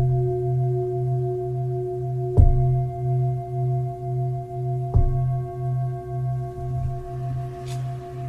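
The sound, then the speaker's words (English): A meditation bell is struck twice to end a meditation, a few seconds apart, and each strike blooms into a steady, shimmering tone with a slow wavering pulse that lingers throughout, with no voices. “So ring the bell to end the meditation.”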